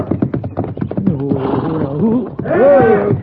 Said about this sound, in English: Yeah, over there by the corral. Come on, let's go. Yeah. But that horse is stomping him.